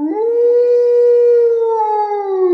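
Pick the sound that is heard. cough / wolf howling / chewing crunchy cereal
wolf howling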